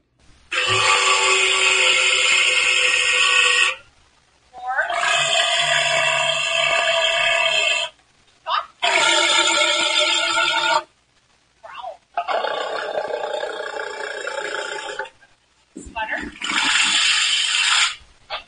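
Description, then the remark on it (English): E.T., a walrus at the Point Defiance Zoo and Aquarium, practices his vocalizations with a series of loud, rasping grunts and barks: about five long, rich, harmonic calls separated by short pauses, with a couple of brief bursts between them. “that was E.T., the walrus, I love the name, practicing his vocalizations at the Point Defiance Zoo and Aquarium.”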